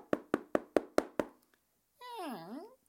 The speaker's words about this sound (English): She must have gone up and down the street, knocking on doors, persuading people to give up their meagre rations.